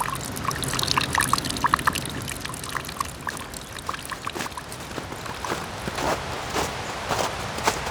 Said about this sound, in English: The crackling and crunching of leaves, twigs, and gravel under your shoes is replaced by snow being patted down by your boots.